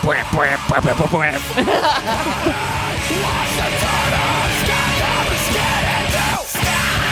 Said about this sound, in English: You know what this sounds like? This sounds like the vocal was recorded first, and then they did the guitars to match the screaming.